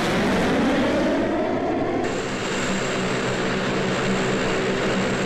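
Loud, steady roar of turboprop aircraft engines from a C-130 Hercules, a dense droning rumble with a sustained high whine that sharpens partway through, no voices.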